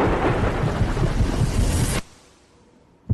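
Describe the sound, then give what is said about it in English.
A loud, dense roar of heavy rain and rumbling thunder fills the first two seconds, then cuts abruptly to a faint, quiet tail before a brief burst at the end. “When extreme weather threatens, you want your windshield wipers to handle whatever the elements bring your way.”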